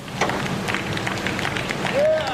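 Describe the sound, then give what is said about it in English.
Scattered applause from a crowd as the statue of John Hamilton is carted off: uneven claps rising over a steady murmur of voices, with a short rising whistle-like tone near the end. “Applause as the statue of John Hamilton was carted off this morning.”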